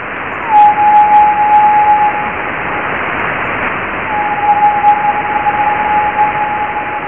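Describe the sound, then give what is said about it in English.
Radio echoes of a transmission off Leonid meteor trails, recorded with an aerial at Jodrell: two steady, high-pitched whistling tones, each lasting a couple of seconds, rise out of continuous loud radio static with a short gap between them. “So what you'll hear in this recording that we made with the aerial that's set up at Jodrell, you'll hear high-pitched noises in this recording that are basically the echo of this transmission coming back off the meteor trails.”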